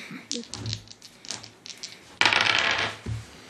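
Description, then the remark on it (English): Dice clatter and tumble across a hard tabletop: a few light clicks at first, then a louder, rapid rattling roll that quickly settles on a 15, with a faint murmur of voices. “You guys got the dice, right?”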